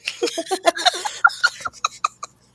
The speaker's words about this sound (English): I'm going to cough until I can get this to work a little better. So go for it. Clear it out. I muted that so you didn't have to hear it. It was a little gross.